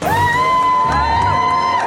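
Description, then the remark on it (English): A crowd at the Queen's Platinum Jubilee celebrations in the UK, marking her 70th year on the throne, cheers loudly and continuously for Harry and Meghan, with high sustained whoops and shouts rising above a dense roar of many voices for a couple of seconds. “There was a cheer.”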